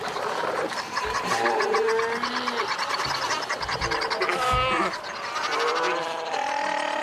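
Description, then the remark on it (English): A crowded chorus of fur seals bellowing and bleating on an island beach, many harsh, wavering calls overlapping continuously at a steady level, heard off in the distance. “However, because I grew up here, I've seen the amount get smaller and smaller and smaller, and the sound of the fur seals bellowing off in the distance has become quieter and quieter.”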